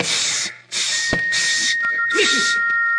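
A low, thin whistle from Dr. Roylott's room, a signal from Roylott, holds a steady pitch for a couple of seconds, faint beneath repeated bursts of breathy hissing, with a sharp knock partway through and no one talking.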